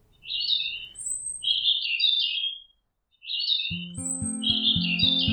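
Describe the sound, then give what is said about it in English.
Warblers sing bright, warbling chirps in quick repeated phrases, clear, over a soft low rumble; near the end steady musical tones join beneath the birdsong. “But the little warblers were soaring through the sky on strong wings, singing happy songs.”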